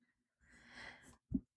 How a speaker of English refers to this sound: it's like a little cough, but I'm going to keep rolling with this.